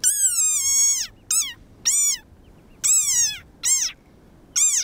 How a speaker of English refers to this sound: It sounds like a dog toy. But actually, this is the sonorous war cry of a very angry frog. Ferocious.